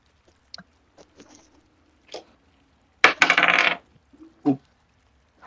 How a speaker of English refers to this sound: That's a healthy sounding dice right there. Well, yeah, but I'm trying to make them land on my mats. So I missed. But still rolled pretty good.